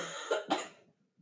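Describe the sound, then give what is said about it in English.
A person coughs twice in quick succession, two harsh bursts, fading into a brief quiet breathy tail with no talking. “She never once made fun of me for my cough these last 7 years, but 7 years, it feels like I've had a cough for 7 years, honestly.”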